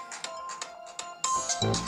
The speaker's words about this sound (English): My phones are ringing. It's crazy.